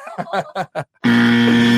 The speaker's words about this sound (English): Hit the buzzer.